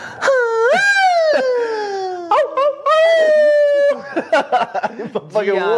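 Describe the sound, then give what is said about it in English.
A man howls loudly like a dog, with long drawn-out wavering cries that slide down in pitch, followed by a few shorter yelping howls and breathy vocal bursts near the end. “He's always howling for no reason.”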